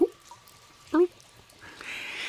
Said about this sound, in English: please insert the sound of like a dripping dungeon kind of lonely environment right here, you know, when we do the introduction.